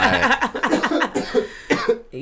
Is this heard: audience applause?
no